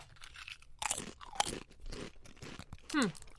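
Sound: crunching Pringles potato chips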